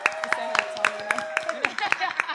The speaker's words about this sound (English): We really appreciate it. You were brilliant. So a fucking round of applause for ye legends.